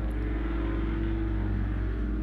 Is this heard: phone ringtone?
no